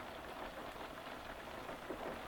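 Steady, dense rain lashes hard against a train carriage window under gloomy skies, a continuous hiss of drops with no pauses and no voices.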